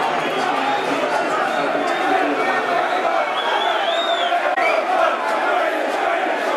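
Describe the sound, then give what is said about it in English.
A large football stadium crowd at an Aston Villa match, in the 87th minute, keeps up a steady, dense roar of voices, with scattered shouts and a couple of whistles rising briefly above the din. The crowd reacts with amusement as player Williams bemoans his luck when the ball goes out for a goal kick. “Williams bemoans his luck to the amusement of the crowd.”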